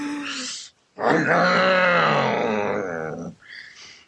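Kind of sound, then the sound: vocal imitation, voice imitating a chainsaw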